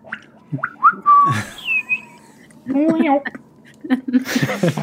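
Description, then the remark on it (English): A person whistles a goat call: several short, sliding tonal notes, mixed with warbling voiced sounds and bits of talking that overlap toward the end. “Whistle. A goat whistle.”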